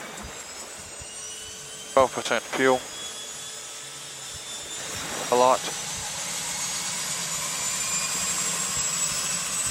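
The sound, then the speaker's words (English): The right engine of a private seaplane fitted with PK floats drones throughout after turning over, a broad, even roar with a high whine riding on top, while a man speaks a few short phrases over it. “Right engine is turning.”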